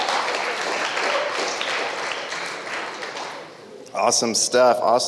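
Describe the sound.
A crowd applauds steadily for about four seconds, a dense wash of clapping that fades slightly before a man's voice starts speaking.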